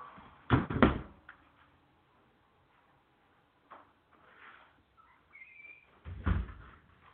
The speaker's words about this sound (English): Let me close this damn door before we get any further in this, man. Give me a minute here, guys.